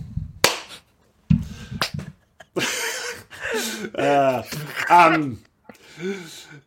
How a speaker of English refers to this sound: And look, single clap.